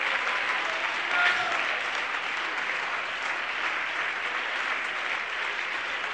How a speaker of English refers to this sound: Give the Lord a hand clap of praise right now.